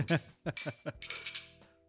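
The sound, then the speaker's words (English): Glasses of double IPA beer clink together in a toast, several quick bright taps followed by a ringing, shimmering tone that fades out, with a faint voice murmuring underneath. “Cheers to you guys.”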